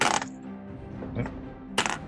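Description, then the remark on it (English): Dice rolled for a will save clatter and rattle against plastic keyboard keys in a few sharp bursts, landing in the cracks between the keys, with a brief lull between the first and last impacts. “Fucking, where's my dice tower? I keep landing in the cracks between my keys.”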